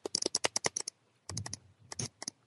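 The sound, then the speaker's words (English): Rapid bursts of computer keyboard typing, crisp, with a flurry of key clicks, a brief pause, then another irregular run of keystrokes. No one speaks. “All right, now you just sound like a hacking scene in any shit movie you've ever seen.”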